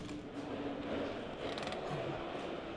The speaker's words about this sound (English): And it's a heavy door. Welcome to the Olympia Conference Centre in West London.